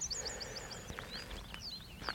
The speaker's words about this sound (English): Ah, there's a reed bunting, I think. Sort of ching, ching, ching. Deep, ching, ching. There's a reed bunting somewhere in the bracken, which isn't too high yet.